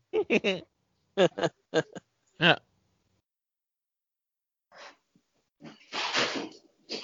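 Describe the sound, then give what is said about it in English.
A few short, voiced vocal bursts give way to slow, raspy, snore-like breathing of a sick woman in bed: a brief inhale, then a long, harsh, noisy breath. “Sounds like my dad snoring. So, is that the cat purring? No, that's the woman in bed.”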